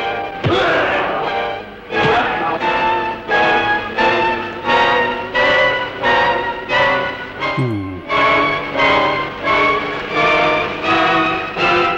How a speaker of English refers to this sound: If you go to 44:45, you'll hear this clip of music. Name that tune.